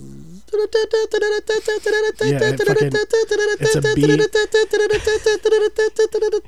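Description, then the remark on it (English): A voice imitates a buzzing bee with a steady, mid-pitched hum broken into rapid on-off pulses, almost like Morse code, while another voice murmurs briefly underneath partway through. “I don't think that's just simulating bee noises.”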